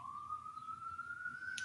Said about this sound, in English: And folks who are now hearing a siren behind me because my apartment is not soundproofed. Interestingly or ironically, I live very close to Elmhurst Hospital, which, as you all know, I live in one of the epicenters of the epicenter.